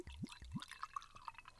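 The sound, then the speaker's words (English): A grapefruit-flavored Korean drink pours into a glass: two deep rising glugs, then a quick run of bright splashing and trickling, with no voices. “I will try not to have my orgasmic moans while you pour up in the future.”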